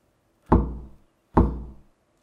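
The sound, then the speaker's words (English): Two heavy, resonant knocks of a gargoyle door knocker lifted and dropped against a massive door, evenly spaced about a second apart, each with a deep booming thud that rings briefly before fading. No voices. “He lifted and dropped the knocker.”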